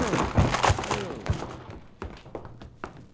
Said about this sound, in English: Come on, help me bust this door down. Only too glad to oblige, Counselor. All right. One. Two. Three.